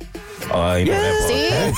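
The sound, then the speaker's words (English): A short, loud bird-cooing sound effect introducing a segment called the Bird Show, a warbling call that rises and falls in pitch for under two seconds, prominent with no talking over it. “Okay, it's Bird Show. Get it, the Bird Show.”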